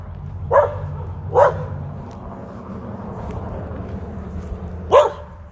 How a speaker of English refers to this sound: Good dog.